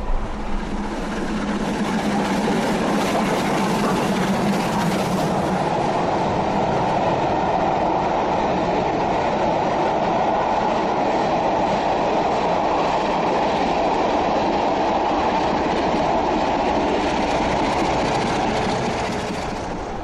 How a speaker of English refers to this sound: Our two locomotives are pulling our long and heavy train at 65 miles an hour at the current time. We're just passing through a place called Stall Meadow, a small housing development of 1970s houses.